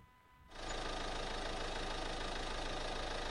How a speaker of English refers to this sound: A little engine like that. A little four banger. A little four banger engine. Sounds like it actually is like a tractor from far away.